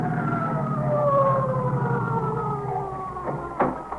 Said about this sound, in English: That's either ESC or the ambulance coming now.